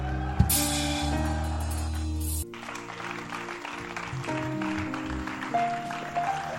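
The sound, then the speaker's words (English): A church crowd on its feet claps steadily to welcome Archbishop Patrick Bruce, a dense, continuous wash mixed with sustained keyboard or organ tones; a loud held chord opens, then the applause carries on alongside lighter music. “And with Jesus' joy and with a clap offering, let's welcome Archbishop Patrick Bruce.”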